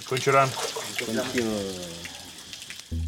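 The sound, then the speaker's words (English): Water pours and splashes steadily over someone like a shower, fairly loud, while a voice talks or chants over the rushing stream. “At a bare minimum, it's the first shower I've had in 3 days.”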